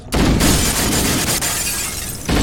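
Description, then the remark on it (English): A fragile glass floor shatters in a video game: a loud, sustained crash of shattering glass fills about two seconds, a dense bright spray of breaking shards with a heavy low rumble beneath, ending abruptly before a brief second burst. “The glass floor is extremely fragile.”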